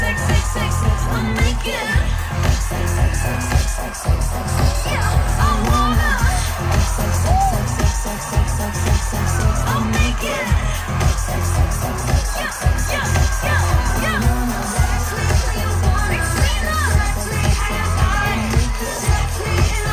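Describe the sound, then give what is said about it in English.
A loud live pop performance with a pounding low beat, a female singer drunkenly shouting lyrics that largely repeat the word "sex", the band and vocals partly buried under a roaring, cheering crowd that stays constant throughout. “Yes, the song largely consists of the word sex repeated over and over again.”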